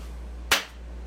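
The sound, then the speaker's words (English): A single sharp hand clap given to start a recording session, a bright percussive snap that decays quickly, standing alone against a low steady hum with no talking. “Give a clap.”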